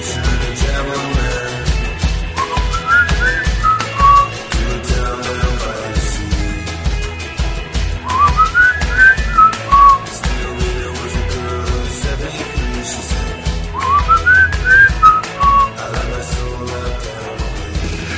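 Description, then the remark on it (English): A whistled melody rises and falls in three short phrases, spaced several seconds apart, riding over a steady, full band backing track with a thumping beat; someone whistling along to the theme song of the FX show Terriers. “I'm just whistling. I love that tune.”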